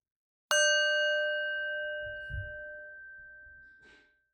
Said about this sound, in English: We'll start with a shared bell.